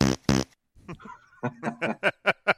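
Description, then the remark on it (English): Two loud, raspy fart sounds blurt out back to back, then a pause before a quick rhythmic run of snickering, laugh-like voiced bursts. “It's a long way for a fart show, man.”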